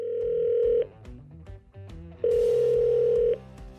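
A telephone call tone from an incoming call from an unknown number, with Jerry Jones on the other line, sounds twice, each a steady, loud, droning beep lasting about a second, separated by a pause filled with faint low background noise. No one speaks.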